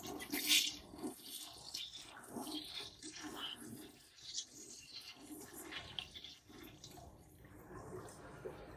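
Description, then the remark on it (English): A toilet flushes: a sharp burst at the start gives way to a steady, gurgling rush of water that swirls on for several seconds without fading much. “And all my hopes and dreams, I could just flush them down in the toilet.”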